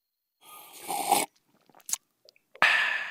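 Sipping of a drink: a hissy slurp, a few faint mouth clicks and swallows, then a second louder slurp that runs to the end. No one speaks.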